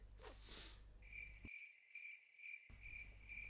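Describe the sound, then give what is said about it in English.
Crickets chirp in a steady, high-pitched trill that runs unbroken for a few seconds, fairly loud, with no voices and only a faint low background hum around them. “Silence is crickets.”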